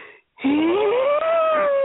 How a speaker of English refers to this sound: As we pause for a yawn.